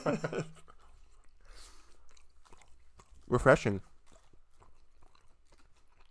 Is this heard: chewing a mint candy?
yes